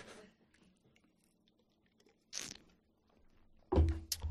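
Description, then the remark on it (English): A quiet stretch broken by a short, breathy slurp of IPA beer being sipped, followed by a louder low thump and brief clatter, with no one talking. “Let me take a sip of the IPA.”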